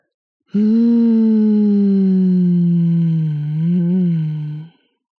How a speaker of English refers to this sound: Breathe in and hum out.